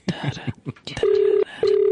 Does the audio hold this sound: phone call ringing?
yes